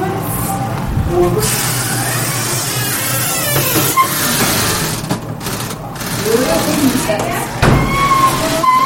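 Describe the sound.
A long, groaning creak from an old door swinging open, wavering up and down in pitch over a steady mechanical rumble, with faint voices in the background.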